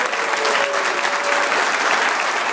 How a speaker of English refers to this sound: So let's give one more round of applause to all of you for all of your hard work. Thank you.